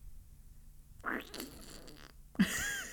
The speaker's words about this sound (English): That's going to sound weird. I thought you farted for a second. No, that was my mouth.